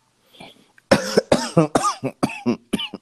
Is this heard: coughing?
yes